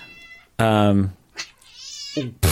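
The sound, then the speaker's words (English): A female pet cat meows loudly: one long, drawn-out meow, then a softer, higher cry and the start of another meow at the end. “My cat suddenly has a chiming in.”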